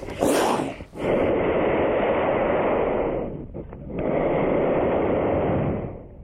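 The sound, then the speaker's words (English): A mother bear at the base of a tree with cubs up the tree lunges forward as someone comes near, slamming its feet down hard, with loud, forceful snorting: long rushing blasts of breath broken by a couple of brief pauses, harsh and noisy throughout, with no voices. “The bear gathers itself and lunges forward, slams his feet down hard, makes the ground shake.”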